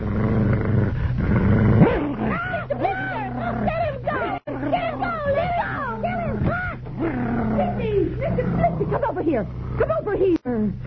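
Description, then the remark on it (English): A puppy dog, Mr. Blister, growls and barks at another dog, Toto, trying to bite it, in a rapid run of snarling, yelping outbursts, fairly loud, over a steady low background hum. “Mr. Blister tried to bite my dog.”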